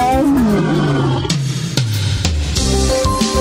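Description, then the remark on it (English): A loud lion roar with deep, rumbling growls that swell and fall in pitch over a few seconds, rough bursts layered on top, and no talking. “ACB Lions, the affiliate that roars.”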